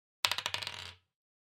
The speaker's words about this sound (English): Yeah, you knock on the door. You can tell immediately by placing your knuckles on it that this is a door that is made of, like, a metal alloy, like either aluminum or titanium or something. It's resonant